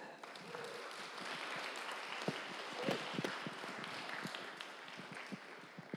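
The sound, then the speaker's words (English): An audience breaks into sustained applause at the news that a man is joining the City Church staff full time, a dense wash of many hands clapping at a steady level for several seconds, with a few sharper individual claps standing out. “Now, right, you clapped for him.”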